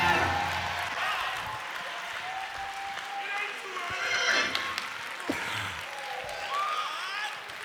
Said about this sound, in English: What you doing? Just giving them a little back praise. While you're clapping, just giving them a little back praise.